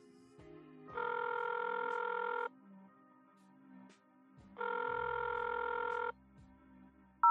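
An outgoing call placed by voice command to Siri on a phone rings on the line: two steady electronic ringback tones, each about one and a half seconds long, separated by a pause, clear and moderately loud with no voices.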